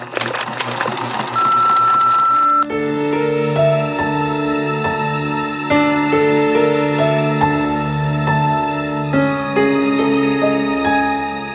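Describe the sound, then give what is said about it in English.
An answering machine beep sounds steadily over a noisy burst, then gives way to a long run of sustained synthetic tones that step between pitches, loud, with no voices. “Now prepare yourself for the beep waits for no one.”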